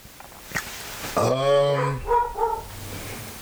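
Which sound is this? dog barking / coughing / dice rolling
dog barking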